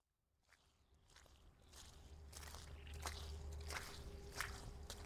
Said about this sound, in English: September 8th, around 11 o'clock, just a half hour after low tide. And I'm at, Carrying Place Cove. And I'm walking out on the mudflats here, which stretch, I'm not really good at distances, but it's easily half a mile, I'm going to say.